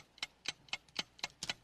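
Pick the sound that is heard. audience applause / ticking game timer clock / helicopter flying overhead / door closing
ticking game timer clock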